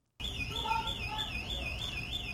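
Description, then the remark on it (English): A building alarm blares with a shrill, high electronic tone that warbles rapidly up and down in a steady repeating pattern, sounding continuously over low background rumble. “Dude, I hate that fucking alarm. Who doesn't turn that alarm off?”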